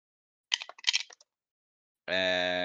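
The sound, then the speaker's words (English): Dice clatter across a hard table in a quick burst of sharp rattling clicks lasting under a second, rolled for attack damage in a tabletop game, followed after a short silence by a steady, sustained voice. “Where are my dice?”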